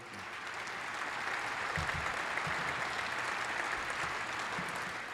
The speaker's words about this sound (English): Before we get started, I want my friends from the AP government class at Seneca Valley Highs here. Are here. Let's, why don't y'all stand up and give these young people a round of applause, please?